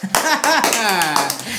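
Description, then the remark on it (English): A group claps together in a brief, dense burst of applause for a child who said she wants to become a speaker in the parliament, with high children's voices cheering and calling out loudly over the clapping throughout. “Can you clap for”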